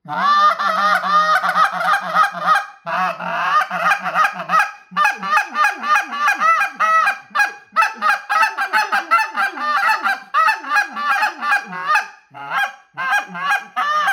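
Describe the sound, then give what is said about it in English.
An Exit goose call is blown in rapid, loud bursts, imitating a flock of honking geese with continuous rhythmic honks and clucks, briefly pausing a few times, with no talking. “GOOSE CALL TIPS! How to: Find your Best Call”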